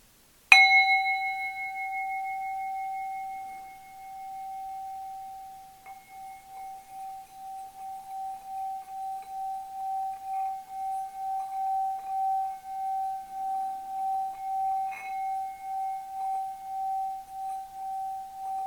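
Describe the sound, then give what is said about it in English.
A singing bowl is struck once, then rings with a steady, sustained hum and a gently pulsing shimmer that lingers for many seconds, heard alone without any talking. “So as we enter into this, I'm going to do just a short thing with the singing bowl.”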